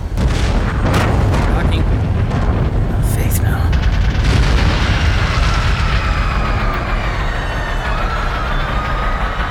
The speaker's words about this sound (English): There's been an explosion. I thought I saw a rocket. Something went into one of the four anti-grav fans.